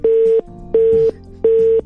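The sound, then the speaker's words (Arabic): A telephone line tone from a failed call to an engineer on the Mix FM radio show: three loud, evenly spaced beeps at one steady mid pitch, each lasting about a third of a second, with no voices. “والله اليوم المهندس شكله الاتصال عنده ماش.”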